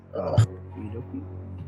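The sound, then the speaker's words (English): A person gives a single short, gruff vocal bark imitating a guard dog, followed by a quieter stretch of low voiced murmuring. “That was my guard dog noise.”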